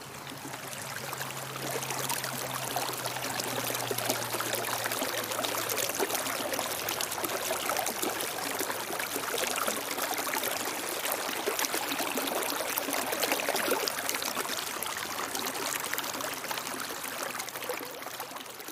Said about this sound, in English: All right, that was the sound of running water. You may recognize that water. That was the Los Gatos Creek Trail, I think it's called. So that was Los Gatos Creek water right there. For anybody who may recognize that by the sound.